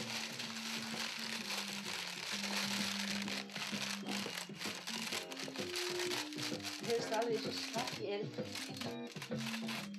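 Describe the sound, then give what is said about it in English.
Foil being crumpled to mimic a crackling fire: dense, continuous crinkling and popping that runs steadily throughout, over a low, shifting tonal hum like a melody underneath. “That you can use foil to make the sound of a crackling fire.”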